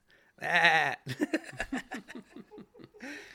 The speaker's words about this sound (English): And when all the sheep, the hundreds, if not thousands of sheep, get to this one bottleneck, it's a bit of a calamity and requires a bit of patience and a bit of force and persistence to get all the sheep through this little gate.